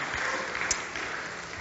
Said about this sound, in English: can we just give a round of applause for your pastor